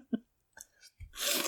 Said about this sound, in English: Noted best podcast snack to have while podcasting. Chips. Chips. It's very good to lean directly into the microphone and crunch. Crunchy potato chips.